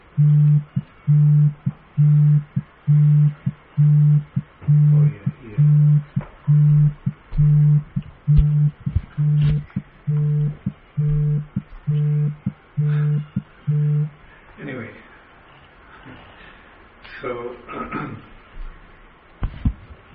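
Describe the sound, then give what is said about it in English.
A phone beeps in a steady, repeating pattern of short tones for about fourteen seconds, fairly loud, then stops, leaving a faint murmur of background voices. “Some phone is beeping.”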